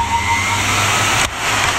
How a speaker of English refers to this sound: Put your hands into this bowl of water. Right. Now, hold them under the nozzle. That's amazing. It's a warm air hand dryer. Useless in a fight, but stops chapping. Ingenious.